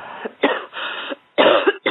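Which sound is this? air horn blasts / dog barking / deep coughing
deep coughing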